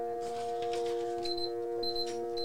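An electronic alarm timer going off: a steady, buzzing multi-tone drone with short, shrill high-pitched beeps repeating in a regular pattern over it, plus faint clicking. No one speaks.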